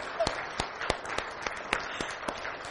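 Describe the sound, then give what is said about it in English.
A crowd applauds new members who have just come up and shared their lives with the group, a steady wash of many hands clapping with a few sharper, louder claps standing out at a fairly regular beat. The applause is fairly soft and holds steady throughout. “Can we just give them a round of applause for getting up here and doing that?”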